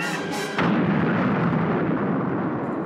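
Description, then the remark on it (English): A cinematic movie explosion with a ring shockwave erupts after a brief lead-in, then a loud, sustained roar and rumble that fills the rest of the moment without fading much. No one speaks. “Explosions are his favorite characters, and he was hoping for the ring wave.”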